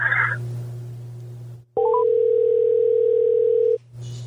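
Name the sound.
telephone dial tone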